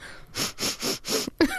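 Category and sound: human body sound, nose sniffing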